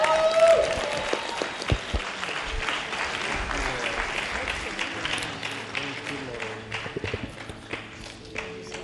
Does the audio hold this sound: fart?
no